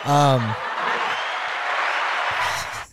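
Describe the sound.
A short voiced whoop opens into a burst of steady group clapping for a person, holding for a couple of seconds, then cuts off all at once into near silence.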